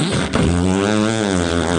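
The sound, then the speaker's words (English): A voice imitates an electric can opener with a steady, droning hum, rich in even harmonics, holding one buzzy pitch for about two seconds with a brief click near the start. “Electric can opener.”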